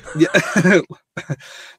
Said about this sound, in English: bad cough there. Kind of bad cough that sounded like I said Neon Demon when I didn't.